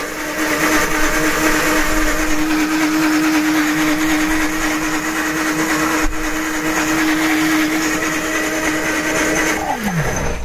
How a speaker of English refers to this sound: Whoa, it's actually like juicing it. Whoa. Yeah, it does work better with liquid. But I mean, the motor's not even giving up for nothing.